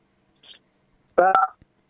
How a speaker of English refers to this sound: I got a beep when you said that. What was that? I said somebody hit their phone when you said that, so I didn't hear your answer.